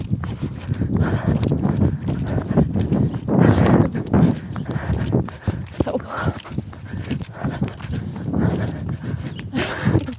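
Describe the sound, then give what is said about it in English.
Heavy, clunky footsteps of a person running fast thud in a quick, steady rhythm, over a constant rush of wind caused by the running and some muffled vocal sounds. “Can you hear how clunky my footsteps are?”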